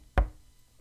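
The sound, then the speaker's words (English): A single heavy knock by a woman on a door, a sharp thud that dies away quickly into near silence. No voices are heard. “I didn't say anything further, but she kept banging and banging on the door until I relented and answered.”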